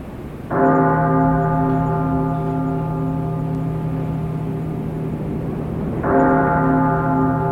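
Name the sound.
church bell ringing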